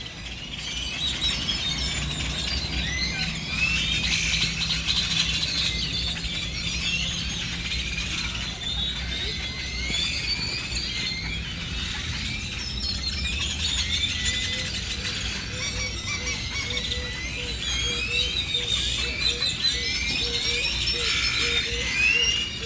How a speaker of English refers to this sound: from a park in the center of Bacalar, Mexico. Listen to these birds. This is crazy. It's sunset, and they're just like hundreds of birds coming to roost for the night. Just listen.